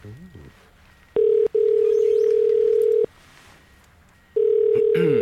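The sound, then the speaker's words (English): A phone line's ringing tone while calling a friend in Budapest: a steady, loud mid-pitched tone in bursts, a short one, then a long one of about a second and a half, a pause, then another, after a brief voice. “Come on, pick up.”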